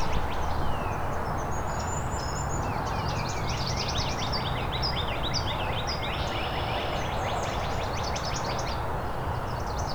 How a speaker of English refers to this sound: Some of the red-winged blackbirds.